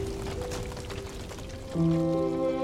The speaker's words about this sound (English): Every time they threaten to diminish, the blaze finds fresh supply of fuel among Qyburn's eclectic store of supplies. Glass jars explode, mysterious liquids boil and fizz, and Qyburn burns beside his little birds.